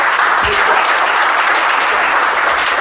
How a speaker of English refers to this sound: So you know what? Give God a hand clap. This is your walking prayer request. Amen.